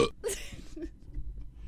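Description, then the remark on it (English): A short burp played as a sound drop, with a brief breathy burst at its start, followed by a low, rough rumble that fades out over a second or so. “You could burp up a couple picks for me today”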